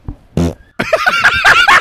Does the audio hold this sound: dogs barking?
no